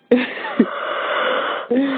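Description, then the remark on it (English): A person yawns: a brief voiced start, then a long, breathy, drawn-out exhale lasting over a second, with a short vocal catch at the end. “No, you're yawning now. Stop. Everyone yawn.”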